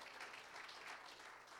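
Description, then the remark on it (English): A steady wash of applause from a crowd giving a hand clap of praise for the word of God, many hands clapping at once in a dense, even, sustained burst with no talking over it. “Can somebody give the word of God a hand clap of praise?”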